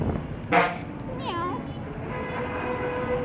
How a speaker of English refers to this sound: Okay, that was a bus. It sounded like a fart, but a bus fart.